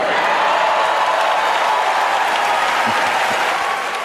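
A crowd claps in sustained, dense applause for LeBron James after he speaks, a loud steady wash of many hands that holds its level for several seconds and eases only slightly at the end.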